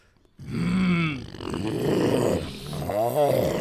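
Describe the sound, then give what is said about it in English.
A person imitates a low animal growl, made from up in the head rather than with the voice, producing a rough, rumbling snarl that swells and wavers for a few seconds, fairly loud, with no other sounds around it. “I'm using all this up here to make that low growl.”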